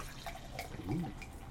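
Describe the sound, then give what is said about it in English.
Beer pours steadily from a bottle into a glass, a soft splashing with one brief hollow gurgle midway; a dark golden, Belgian-style beer forming a big white frothy head. No one speaks. “By the way, using our I Heart Day Drinking... bottle opener in the pour.”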